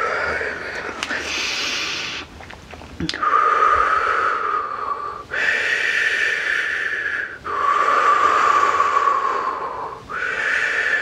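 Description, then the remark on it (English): Loud breathing in a steady rhythm, long airy inhales and exhales flowing one into the next with brief pauses between, about five breaths, rough and hissy in texture. “Shifting, breathing.”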